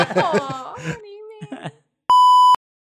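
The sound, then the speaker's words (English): A person vocally imitates a flock of geese, with a quick run of nasal honks and a drawn-out falling call, followed by a short, loud electronic beep. “A flock of geese passes overhead.”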